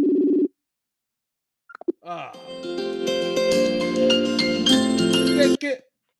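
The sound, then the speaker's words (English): An outgoing phone call rings: a short steady ring tone, a pause, a few clicks as the line connects, then several seconds of dense, tuneful ringback melody before it cuts off. “I just called you to get your predictions, man.”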